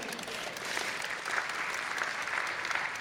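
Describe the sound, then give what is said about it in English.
An audience applauds for a dancer who performs as a mermaid, a steady, dense wash of many hands clapping at an even, moderate level for about three seconds, with no voices over it. “I think she just deserves like a hands of applause.”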